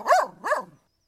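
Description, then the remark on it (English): A dog named Bobbik barks along during a rest on a grassy bank, two clear woofs in quick succession with a rising-then-falling pitch, heard alone with no other sounds. “Didi hummed a song and Bobbik barked along.”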